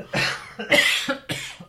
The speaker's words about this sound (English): I didn't even have any and I coughed.